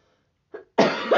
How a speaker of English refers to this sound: You just keep coughing?